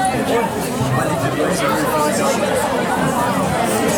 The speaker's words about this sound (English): Reaction of the entire crowd there.